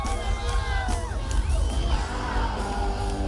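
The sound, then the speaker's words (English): A large rock concert crowd, heard from the front of the stage amid a sea of confetti, cheers and screams continuously, with overlapping whoops and high yells rising and falling over a dense, loud roar that never lets up. “Oh, we were front stage. Oh, definitely one of my greatest rock and roll moments in my life.”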